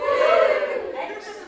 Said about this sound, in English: Can you give me a cheer, don't be shy, if you're involved in makeup, if you're a makeup student or in the business of makeup? After three, one, two, three.